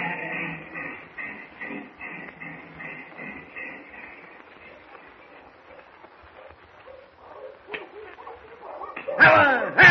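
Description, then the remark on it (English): A sled dog team runs with a steady, rhythmic rushing patter that thins out midway, then the driver's whip cracks loudly and sharply a few times at the dogs near the end. “He just keeps saying that one word and cracking his whip at the dogs, Mr.”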